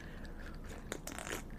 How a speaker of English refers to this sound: Y'all might have thought cheers like to a hit, but I actually took a sip this time, for those of you guys listening.